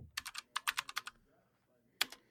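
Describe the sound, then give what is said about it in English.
Quick bursts of typing on a computer keyboard as someone types in 'badger song': a cluster of clicky keystrokes, a short run of about six more, then a pause before one final sharp key press. No voices. “I wonder if it's just going to come up if I just type in badger song.”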